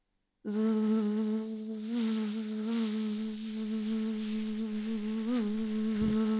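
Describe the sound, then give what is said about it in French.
A mosquito's high, whining buzz starts suddenly and drones on steadily, fairly loud, its pitch wavering slightly as it hovers, with no voices present. “Mais l'homme n'a pas le temps de refermer les mains sur le moustique, que l'insecte, plus rapide qu'un faucon, fonce droit sur lui et zoom, s'enfonce dans le nez du roi.”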